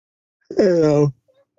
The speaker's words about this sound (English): The reason I'm yawning so much is because last night when I was able to see the flames at another part of the fire, it kind of split, and it's kind of like a Y right now, and we're almost kind of in the middle of it.